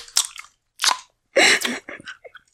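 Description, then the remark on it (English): Soft gummy candy (jujubes) being chewed, a few wet, squishy bites coming in irregular bursts with brief pauses between them and no talking over it. “I want to hear you chew into...”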